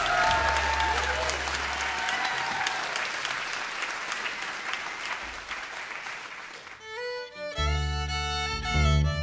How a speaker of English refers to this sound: Please give them one more round of applause all the way back to the LiveWire stage